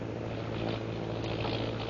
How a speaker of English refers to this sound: Sounding like airplane. Airplane?